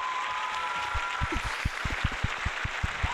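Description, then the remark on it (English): Applause for basketball player Carmelo (Melo): a steady wash of crowd noise with a quick, regular run of about a dozen soft, thumping claps rising over it, with no talking. “We can get some nice applause.”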